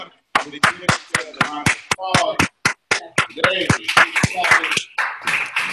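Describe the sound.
Sharp claps ring out in a steady, rhythmic beat, about four per second, with voices calling and talking loudly over them throughout.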